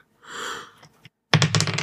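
A soft rattle and a single click, then a loud burst of rapid hard clattering as dice, rolled for damage, tumble across a surface, with no voices.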